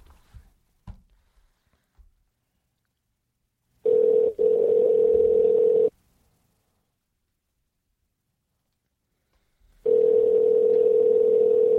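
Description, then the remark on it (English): An outgoing phone call's tone on a call to Henzo Gracie: two steady, loud, mid-pitched buzzing tones, each lasting about two seconds with a long silent gap between, after a few soft clicks and thumps. “Right, we're going to call Henzo right now.”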